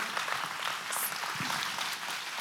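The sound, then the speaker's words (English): A church audience claps steadily during a service, a dense wash of many hands applauding together at moderate volume, sustained throughout with no talking over it. “Come on, let's give them a clap for that.”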